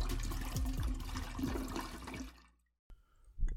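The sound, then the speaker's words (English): A toilet flushes in a loud, gushing rush of water for a couple of seconds, then drains away abruptly, followed by a brief click and a faint refilling gurgle. “Yes, again, getting flushed.”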